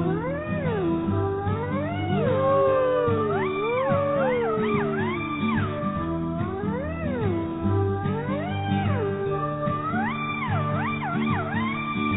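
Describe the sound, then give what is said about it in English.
A black cat meows repeatedly with rising and falling, drawn-out cries, loud, over a steady musical backing that plays throughout. “Oh no, it's a black cat.”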